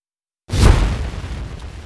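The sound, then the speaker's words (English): A single bomb explosion sound effect erupts after a moment of silence, a sudden loud boom with heavy low rumble that decays into a long, rolling tail. No voices. “I'm going to drop the bomb and then start the clock.”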